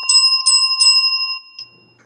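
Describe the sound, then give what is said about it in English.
A bell rings out several times in quick succession, bright and metallic, then its tone lingers and fades away with no talk over it. “So let me give Lab Rat the bell real quick”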